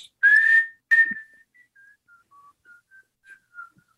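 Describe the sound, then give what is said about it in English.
A person whistles the nursery-rhyme melody Farmer in the Dell, as the character Omar would whistle it, opening with two loud, breathy notes, then trailing into a string of short, softer notes that dip and rise. No talking. “No, it was, that was Farmer in the Dell. I think is what he would whistle, right?”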